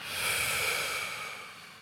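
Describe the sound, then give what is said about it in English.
A slow, deep exhale of breath during a guided breathing exercise, steady, with a soft airy hiss that swells and then gradually fades over about two seconds, with no talking. “And hold your breath while you inhale. Hold it a little bit. Smile. And exhale.”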